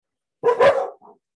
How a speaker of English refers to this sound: The dogs are very excited on this full moon. We're going to allow it and appreciate it and love it.